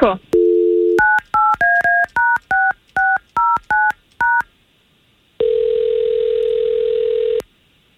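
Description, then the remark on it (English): A quick run of about ten touch-tone beeps as the Orlando country radio station K92.3 dials a listener's phone number, each short dual-pitched tone crisp, followed by a steady ringback-style tone lasting about two seconds. “We're going to try to get him on the line and see if we can't find out what's going on with him, okay?”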